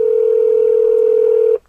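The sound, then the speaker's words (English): A single steady telephone tone, loud, holds unbroken for about a second and a half before cutting off abruptly as someone phones a person up. No one speaks. “He's got his phone in someone up.”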